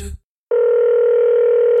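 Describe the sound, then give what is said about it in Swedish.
After a brief rustle and a moment of silence, a loud, steady telephone dial tone starts up and hums on without a break, clear, as the show Sporthuset begins an outgoing call to Bingo-Lotto presenter Leif "Loket" Olsson. “Sporthuset ringer upp.”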